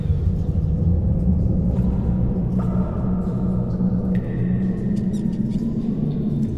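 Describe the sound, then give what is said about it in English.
A steady, hollow low rumble of a BattleBards dungeon soundscape for tabletop RPGs, with a few faint high squeaks and drips cutting through now and then. No voices, just continuous dark ambience. “The hollow and closed sounds of a dungeon.”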